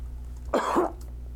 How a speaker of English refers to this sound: Excuse me. Right. We'll have to cut that out. I sneezed. No worries. Bless you.